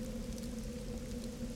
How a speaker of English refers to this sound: Rain is still kind of trickling down. It's not heavy rain, but it's just like a consistent just layer of rain that's been drizzling for the last like 10 minutes or so.